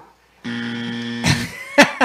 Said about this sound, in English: you get the wrong buzzer right away.